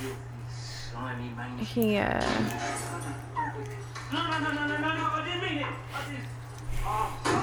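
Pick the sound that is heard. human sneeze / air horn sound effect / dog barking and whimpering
dog barking and whimpering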